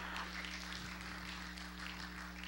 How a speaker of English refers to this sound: Oh, you can clap. Come on.